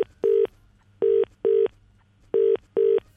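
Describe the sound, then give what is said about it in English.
A prank telephone call connects with electronic line tones, short steady beeps arriving in pairs with brief pauses between them, clear with no voices. “Gets a phone call from that guy.”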